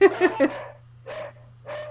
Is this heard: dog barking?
yes